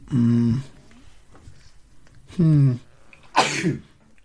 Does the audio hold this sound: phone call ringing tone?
no